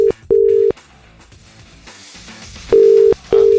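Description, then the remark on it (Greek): An outgoing phone call's ringing tone, a call to the speaker's sister-in-law: two steady, buzzy tone bursts, a pause, then two more, clear as if heard through a handset, with no one talking. “Έλα βρε Αγγελικούλα, σήκωσέ το.”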